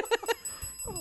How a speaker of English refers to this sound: Ring that bell.